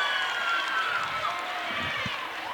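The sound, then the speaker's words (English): The Cavaliers student section at a basketball game on Hawaiian night roars steadily as a player goes to the free-throw line, a dense, continuous wash of voices with a few higher shouts and whistling tones rising and falling above it. “And you can hear the Cavaliers student section.”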